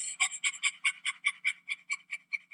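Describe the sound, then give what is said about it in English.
Quick, breathy panting from people with tongues on their lower lips, imitating an excited puppy whose owner just came home, about a dozen short huffs in a steady rhythm that gradually soften and speed slightly toward the end, with no talking. “Go ahead, run up to your partner right now and stick your tongue onto your lower lip and pant like a little puppy dog whose owner just came home.”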